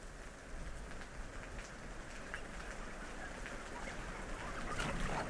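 Steady rain patters on a hard surface in a dense, continuous wash, with scattered louder drops standing out and the downpour swelling slightly toward the end. No one speaks.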